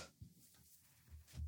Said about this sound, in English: Excuse me. Get the hiccups? No, it was just the one. Oh, okay. I had the hiccup.